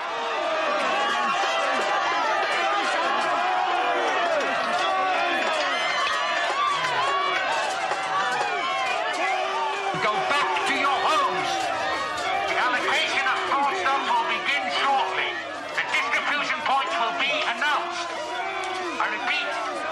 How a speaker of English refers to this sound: These are ordinary citizens, of course, who are shouting and battering the gate. They're not criminals, they're not thugs. But they've been driven to arm themselves with metal poles and sticks and to pound and roar and batter at the gates